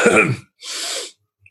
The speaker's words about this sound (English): The dwarf in front of you coughs.